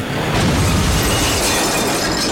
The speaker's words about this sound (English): The BMW sailed through the tinted glass facade of the Jacob Javits Center.